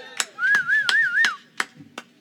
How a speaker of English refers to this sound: Hype them up. Family, give them a round of applause.